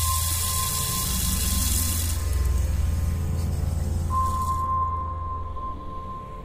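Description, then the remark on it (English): A bathroom tap runs steadily, a loud continuous gush of scalding hot water into a basin, easing slightly near the end, with a faint high whine humming underneath. “There, she performed a complex maneuver involving a pair of tweezers, scalding hot water, and her umbilicus, colloquially known as the belly button.”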